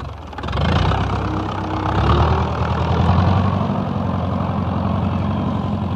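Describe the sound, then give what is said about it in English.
A Fordson farm tractor engine runs steadily, its low, throbbing rumble holding at a fairly loud, even level throughout with no voices over it. “And Henry Ford's ambition was eventually realized with the manufacture of the Fordson tractor.”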